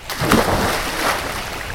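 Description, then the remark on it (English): A heavy splash as a large creature sinks backwards into water in a wider part of a stone chamber, followed by churning and sloshing that fades over a couple of seconds. No voices. “There are sparks shooting up as his claws are digging at the stone, but he ends up sinking backwards into the water where the chamber is wider.”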